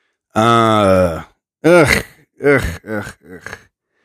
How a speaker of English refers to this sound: I'm yawning right now.